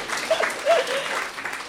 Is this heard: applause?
yes